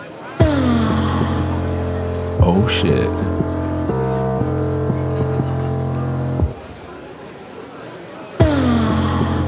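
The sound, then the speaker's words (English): Dense crowd noise of many overlapping voices and chatter at the start of an art rock song, loud and continuous, starting and stopping abruptly, with a steady hum and a brief exclamation from one voice. “First of all, I think there's just straight up, oh yeah, crowd noise.”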